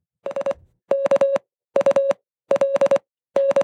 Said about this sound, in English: Since I was bad in using word of the day, that's skulk in Morse code. There you go.